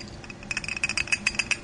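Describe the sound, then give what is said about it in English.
Liquid pouring into a glass conical flask while working up homemade biodiesel: a quick run of bubbly glugs and light clinks with a bright, ringing glassy tone, growing more regular over under two seconds, with no voices. “Okay, so you've just poured it into the flask, and here goes some water.”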